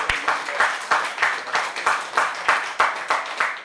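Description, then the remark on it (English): An audience giving Jesus a big clap of hands, clapping in a steady, quick rhythm, with sharp accents roughly three times a second over a continuous wash of many hands, fairly loud throughout with no talking. “Can we give Jesus a big clap of hands?”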